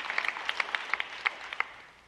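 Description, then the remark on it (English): Scattered audience applause: a dozen or so sharp, uneven claps that thin out and fade within two seconds, fairly quiet and with no voices over them. “Yeah, you should clap for that.”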